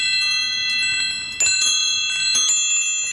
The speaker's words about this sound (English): Yeah, we're going to change those chimes to electric guitar today, I think. Anyway, it's time for our favorite segment, What's the Wish?